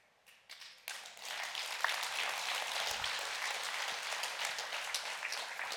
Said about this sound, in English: Y'all clapped. I should have quit right there.